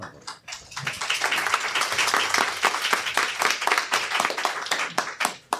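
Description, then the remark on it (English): A burst of applause from a group, dense overlapping claps sustained for several seconds at a steady, fairly loud level with sharp individual claps standing out, and no voices. “He got the clap? He got the clap. Did you hear it at the end?”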